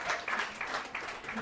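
An audience applauds with a steady, dense wash of clapping that lasts the whole moment, with a faint voice or two mixed into the noise.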